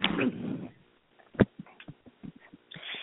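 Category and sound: animal, dog panting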